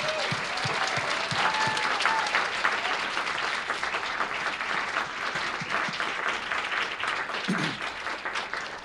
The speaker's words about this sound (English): Here they are, Transom Traveling Workshop, Seattle. Oh, nope, we're not here all yet. 2019, big round of applause if you would, please.